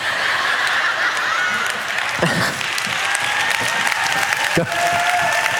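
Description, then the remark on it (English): A church audience applauding steadily, a dense continuous wash of clapping that holds its level throughout, with a few brief louder bursts and faint voices or laughter mixed in. “Don't clap, I'm not healed.”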